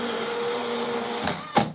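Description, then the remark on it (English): A blender whirs steadily through an anti-aging green smoothie with mango, a continuous mid-pitched motor drone, then two short sharp bursts of noise near the end. No one speaks. “Amazing, let's blend it up.”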